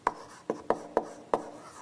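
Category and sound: tool, writing on a board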